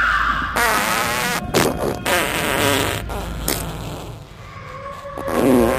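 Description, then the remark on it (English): Loud, buzzy fake fart noises repeat back to back in a rapid sequence, each one a raspy, sputtering blast, sounding like a canned effect cycling on a loop. “If you listen to it long enough, you hear it loop, or you hear like the same sequence of fake farts.”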